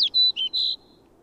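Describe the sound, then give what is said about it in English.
A flock of black-and-white snow buntings (Arctic snowbirds) near a depot in driving snow gives three or four sharp, high whistled notes, clear and tonal, following one another quickly before fading into quiet background hiss. “Yet in spite, or on account of all, I see the first flock of Arctic snowbirds near the depot, white and black, with a sharp, whistle-like note.”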